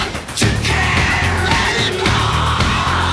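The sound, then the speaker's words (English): Harsh, shrieking vocals, isolated by AI from a mix with the loud guitar parts removed, yell continuously over a dense, smeared wash of noise, with a warbly, glitchy digital artifacting texture throughout. Loud, with no clear instruments. “And as you can hear, a lot of digital artifacting. Very imperfect, this AI, but so I'll try not to lean on it too much, but it can be interesting.”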